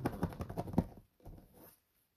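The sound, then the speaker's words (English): A deck of cards being shuffled: a quick run of crisp, papery flutters for about a second, then a brief pause and a shorter, softer riffle. No voices. “Shuffle still intensifies.”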